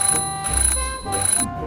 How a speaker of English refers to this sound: They give me a job to do every morning, but when I do it, they still tell me off. Who am I? I'm an alarm clock. And yes, it's a thankless job.